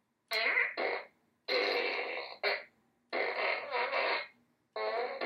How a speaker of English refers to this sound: Okay, hold on. I do have a fart gun. I have a fart gun from Minions. Hold on.